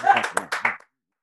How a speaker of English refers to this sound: Can we just clap for I don't do refunds? But I like that.